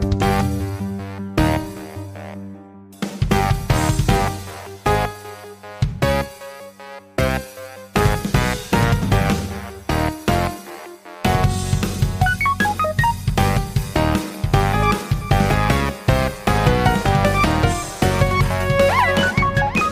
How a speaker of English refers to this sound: And we got a brand new theme song. Here it is.